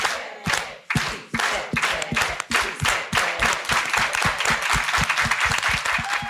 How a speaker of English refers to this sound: Okay, let's all do it with an organized hand clap. Everybody together, let's go.